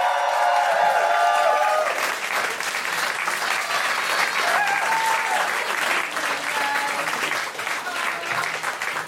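crowd, audience applause

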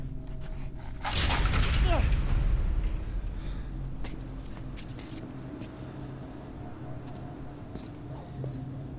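household object, door creaking open

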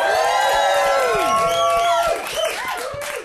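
crowd, audience cheering and whooping

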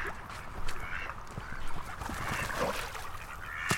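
bird, ducks quacking

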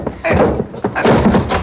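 impact, locked door

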